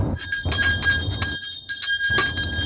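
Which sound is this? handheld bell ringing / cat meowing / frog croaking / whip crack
handheld bell ringing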